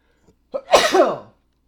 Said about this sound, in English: I've got to sneeze right away.